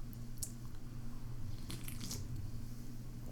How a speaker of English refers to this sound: I'm slurping it. It's not bad. It's not bad. Do I got this all the way open? It's very sweet, though.